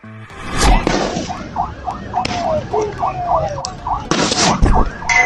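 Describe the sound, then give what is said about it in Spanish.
A chaotic clash between Icaflor company workers building the Dos Bocas refinery in Paraíso, Tabasco, Mexico, and State Police and Mexican Navy personnel: a warbling siren or alarm repeats in quick rising tones over shouting crowd noise, with several sharp loud bangs cutting through the commotion. “Lo que acaba de escuchar es un enfrentamiento entre trabajadores de la empresa Icaflor, que laboraban en la construcción de la refinería de Dos Bocas en Paraíso, Tabasco, y elementos de la Policía Estatal y de la Marina Armada de México.”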